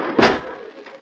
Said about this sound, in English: Wait, I'll close this door.